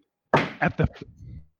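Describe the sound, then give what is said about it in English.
Four knocks on a wooden door adorned with a withered bough and a tattered crimson bow, with a large door knocker in the center, in quick, slightly uneven succession, the first the heaviest, each a dull thud with a short resonant ring that fades after the last. “Without thinking, you knock on the door.”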